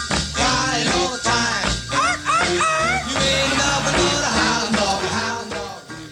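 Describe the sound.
An upbeat 1955 band recording in which singers yelp short, playful 'arf arf' dog-bark imitations over a busy, loud backing of instruments and sung vocals.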